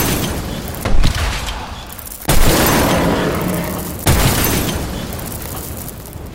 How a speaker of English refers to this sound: Whoa, trenches? Explosions? How are you not absolutely terrified?